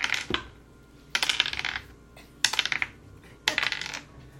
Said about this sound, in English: Apparently that dice didn't want to roll. Oh, it's way over here.